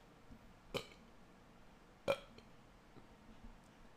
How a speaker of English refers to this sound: I don't know. I got a burp.